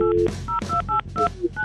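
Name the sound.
telephone dialing tones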